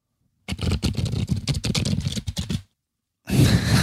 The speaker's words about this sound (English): It takes a lot of practice to shuffle that good. sounds good too, the same. It's crispy.